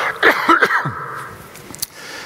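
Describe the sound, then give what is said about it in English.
A short cough from a speaker: a few quick, raspy bursts in the first second, trailing off into quiet with no talking. “Excuse me, I'm going to cough.”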